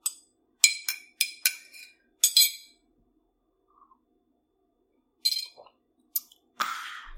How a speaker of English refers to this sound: Ooh, and speaking of tea, let's see if my tea has cooled. All right, let's take a sip.